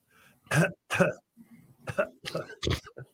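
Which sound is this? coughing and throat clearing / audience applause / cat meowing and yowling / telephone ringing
coughing and throat clearing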